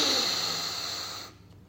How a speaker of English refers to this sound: Okay, so we're going to do a two in, one out breathing method. Here we go. Breath in.